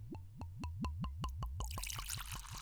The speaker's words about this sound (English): I mean, that is gorgy. That in and of itself is worth the price of the bottle. I mean, that was a gorgeous pour. So George Dickel, Tennessee whiskey.